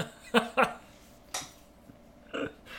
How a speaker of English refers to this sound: Now, when his fingers get chopped off, the sound effect they chose was that of porcelain breaking. For some reason.